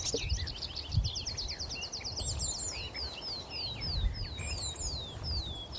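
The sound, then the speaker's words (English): Meadow pipits, skylarks and warblers sing outdoors on a hilltop with oakwoods in a steady stream of quick, high, repeated chirps and trills, moderately loud over a low, rumbling wind-like background; no one speaks. “Pipits, skylarks, warblers.”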